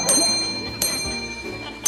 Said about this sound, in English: Do both shows have a scene with an impatient customer ringing the check-in bell?